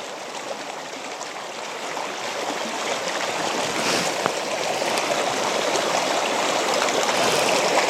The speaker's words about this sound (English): You can hear, I don't know if you can hear, but I can hear like the waterfall underneath the ice. It's kind of like a muffled, very muffled kind of noise.